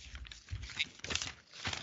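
Paper rustling and crinkling in irregular bursts, with crisp, bright crackles and a few louder crunches, fairly quiet overall with no talking.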